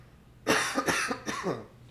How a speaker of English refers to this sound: I have to cough.